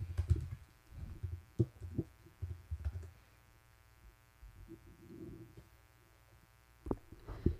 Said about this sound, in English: Yeah, just a quick Google search and you can edit out the time it takes me to find out. It's going to be like 30 seconds. Loud typing.